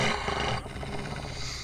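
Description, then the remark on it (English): A loud roar from a big cat, rough and sustained for under two seconds, shifting partway through into a rumbling, growly tail with no voices around it. “Roar in his face.”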